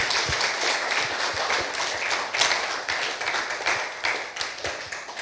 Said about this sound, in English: So thank you everybody who shared this morning. Can we just give glory to the Lord once more with a hand clap of praise to him?